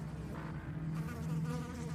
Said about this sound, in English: Standing upright again and tightly pressing his lips together to avoid inhaling any flies, Bernard walked around to the front of the refrigerator.